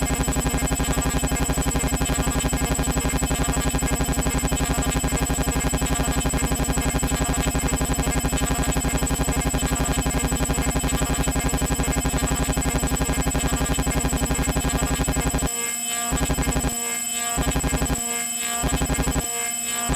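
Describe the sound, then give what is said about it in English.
A dense, buzzing synthesizer drone with steady harmonic layers, loud, then chopped into rhythmic stuttering bursts near the end as the speed of one of its LFOs is modulated and speeds up. No voices. “Modulate speed of one of these LFOs.”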